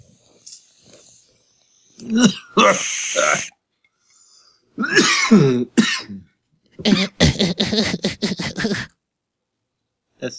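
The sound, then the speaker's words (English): A person fakes a harsh coughing fit, loud, acting as if after taking a bong hit: a few heavy, wheezy hacks with short pauses, then a rapid string of short, choppy coughs. “Okay, I'm gonna act like I just took a bong load, and that I'm coughing.”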